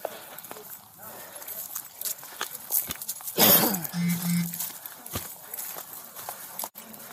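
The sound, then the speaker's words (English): A backhoe crashes and crunches into vehicles and buildings, with one loud grinding smash midway, a brief low mechanical drone after it, and scattered clanks and thumps throughout. “Just like in the last bit of audio, you hear the crashing of the machinery into both vehicles and buildings.”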